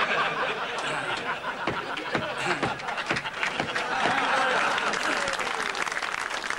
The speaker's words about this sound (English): You can't see that, but obviously you heard the applause. Yeah. Astonishing. It doesn't get applause right for the Viali gag.